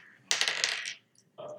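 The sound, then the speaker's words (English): Dice rolled for a perception check clatter and rattle across a hard surface in a quick burst of bright, clicking impacts, followed by a short pause and a fainter second rattle as they settle. “Roll a perception check.”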